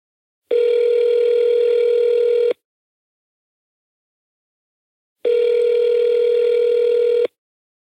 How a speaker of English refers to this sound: I purposely did not look into what would happen when you called it. I'm going to speakerphone it.